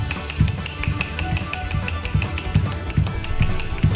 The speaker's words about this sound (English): He's a college student from Japan, and he set a world record for the most finger snaps in 1 minute. This is all, again, this is all snapping on one hand. The record is 296 times.